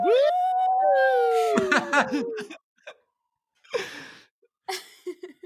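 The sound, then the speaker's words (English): A loud, wavering ambulance siren passing outside an apartment holds a bright harmonic tone for about two seconds, then breaks into short breathy bursts and gasps separated by brief silences. “The constant barrage of ambulances outside my apartment while we're complaining about poorly written gay characters.”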